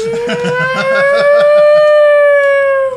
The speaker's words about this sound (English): Oh, that was so loud. In case you folks don't notice, a fire engine just went by.